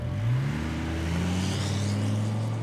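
A car engine revs up, its pitch climbing quickly, then settles into a steady, loud droning hum as the vehicle pulls off. No one speaks.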